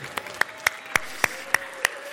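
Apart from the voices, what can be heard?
audience applause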